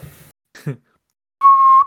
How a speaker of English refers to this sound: Yes, like this. And I pick up the whistle and I give it a really loud blow.